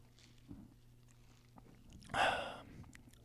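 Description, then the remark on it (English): A single sip of Red Bull mixed with Northland vodka: a short, noisy slurp lasting about half a second, rising out of a faint hum with a few faint clicks before it. “Oh, I'm going to take my first sip.”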